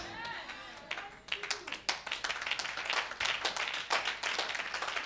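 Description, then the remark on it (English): A church audience breaks into clapping for Jesus during a sermon: many hands striking together in a dense, fairly steady patter that fills the room, following a brief moment of a voice at the start. “You can clap for Jesus, somebody.”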